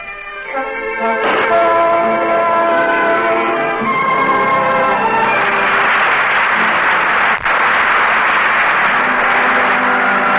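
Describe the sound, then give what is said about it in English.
A sustained orchestral chord rings out for several seconds, then loud theater audience applause swells in for the performance of Robert Mitchum, Julie Hayden and the cast on the Cavalcade of America radio broadcast, continuing as steady, dense clapping to the end, with no talking. “I'm sure our radio audience joins the audience in the theater tonight, applauding the performance of Robert Mitchum, Julie Hayden, and the rest of tonight's cast on the Cavalcade of America.”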